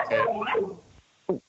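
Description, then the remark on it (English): A drawn-out, wavering animal yowl followed by a short, sharp bark, like a dog and cat squaring off, with a brief quiet gap between the two sounds. “It's a dog cat standoff, I think.”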